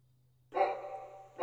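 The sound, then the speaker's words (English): A dog bark sound effect played from a keyboard, loud: one drawn-out bark followed by the start of a second, with near silence before it and no one talking. “Who's that dog bark?”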